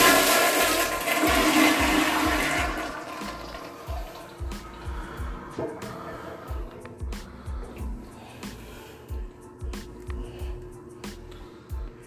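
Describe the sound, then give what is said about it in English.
A toilet is flushed, with a loud rushing surge of water that fades after a few seconds into steady, rhythmic gurgling as the tank refills. “I'm gonna flush a toilet right now.”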